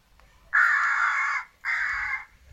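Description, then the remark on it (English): Two loud, harsh crow caws in quick succession, the first longer than the second: a recorded crow distress call played from a device set on a roof, clear with only faint background noise between them. “Wonder how they recorded that noise. Do you think they just tortured a crow for a while?”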